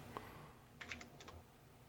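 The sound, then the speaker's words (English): Soft typing on a computer keyboard, with a few quick clicks, a brief flurry of keystrokes in the middle, then a short pause and a couple more taps, quiet. Someone is typing the words "Garibaldi Glacier" into a search. “I'm typing Garibaldi Glacier.”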